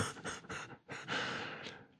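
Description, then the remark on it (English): Audible breathing with no talking: a few quick, airy breaths in and out, then a longer, drawn-out exhale that slowly fades. “Nobody's stopping me breathing in and breathing out.”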